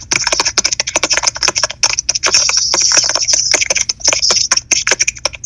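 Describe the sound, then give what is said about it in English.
Rapid, continuous clacking of keys on a computer keyboard, with dense, irregular bursts of bright clicks and no voices, lasting several seconds. “So I can't put you on speakerphone and talk to you and type to her at the same time.”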